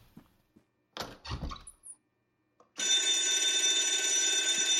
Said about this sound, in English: What's the punishment for pulling the fire alarm when there's no fire?